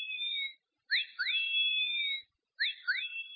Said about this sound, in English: And it also has a catcall to it, so if you're lost in the woods, you can hit a button, and it will go ahead and start doing the catcall, so you can save your voice.